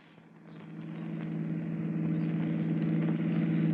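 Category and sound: vehicle, car engine running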